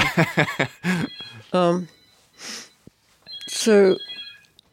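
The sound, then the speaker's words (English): A phone rings with a steady, high electronic tone in two bursts, sounding in the background beneath people talking. “Is that my phone?”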